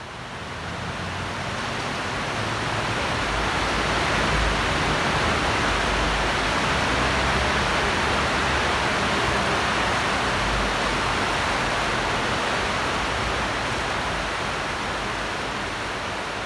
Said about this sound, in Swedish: Vi hör en flod under järnvägsstationen i Leeds. Här ligger The Dark Arches, bokstavligt talat en dold, kuslig värld. Tegelvalv som leder floden Air in under staden